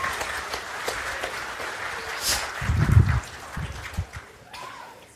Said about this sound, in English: Let's give a round of applause for our volunteers.